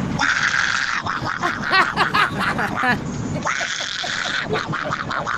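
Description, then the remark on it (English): A human voice imitates a bird call with buzzy, warbling, quack-like squawks that rise and fall in quick bursts, running steadily for about five seconds with a brief dip midway. “It's a human.”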